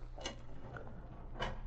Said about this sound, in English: Britt Reed made an intensive search through desk drawers and file cases, but nothing came to his notice that might be of use for his purpose.